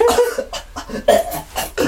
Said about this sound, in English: Yeah, what was the first sound like? Literally that, coughing, like, coughing.